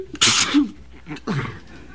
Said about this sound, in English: I heard you coughing on the air earlier today. Sounded like you might be coming down with something.